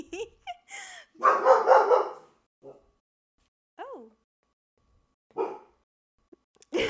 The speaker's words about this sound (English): And it's, like, Winnie is barking at the corner. Or not barking. She's, like, threatening the corner to do something.